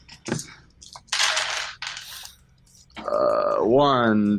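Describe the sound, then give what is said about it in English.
A quick click, then two short bursts of rattling clatter, like dice being scooped up and rolled for a dexterity plus stealth roll in a tabletop game, followed by a person's drawn-out, rising and falling voice. “I don't have enough dice. Hold on. Got it. Now I do.”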